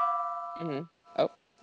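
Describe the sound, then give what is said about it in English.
A gong rings out with a steady, sustained tone that holds for nearly a second before cutting off, signaling that time is up, while a voice briefly talks over its tail and again just after. “Oh, there goes the gong. Well, that's our time.”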